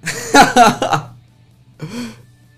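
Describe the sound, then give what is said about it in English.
A few rough coughs in quick succession, then a short pause and one more throaty cough, like someone clearing their throat. “You hear me cough, bro. You know what that means, bro.”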